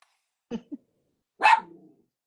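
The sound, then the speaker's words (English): A female dog lets out a quick, soft woof and then one loud, sharp bark that trails off into a brief rumble, with silence between. “She's just like barking at the air.”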